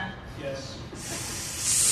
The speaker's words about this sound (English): Oh no, they're hissing. I'm going to start doing that when I disagree with you.